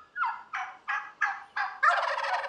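A wild turkey gobbles in a rapid series of five or so rattling bursts, ending in a longer rolling gobble, loud with no voices.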